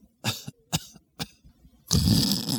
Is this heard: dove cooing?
no